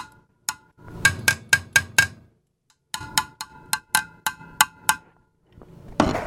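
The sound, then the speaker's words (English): Knuckles rap on a CRT TV's hard glass screen, about a dozen sharp knocks in two quick rhythmic bursts, each with a brief hollow, glassy ring. “Number one, if you knock in the front, it's hard glass.”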